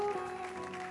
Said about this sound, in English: Let's put our hands together for the Lord, for the Lord, for the Lord, for the Lord. Keep clapping, keep clapping, keep clapping.